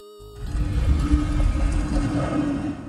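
A heavy, continuous grinding scrape of stone as a mirror glass slowly lowers into the floor, rumbling low and steady for nearly three seconds after a brief quiet start, with a faint hum running underneath.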